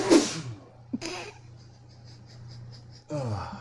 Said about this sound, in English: had to sneeze. Sorry about that.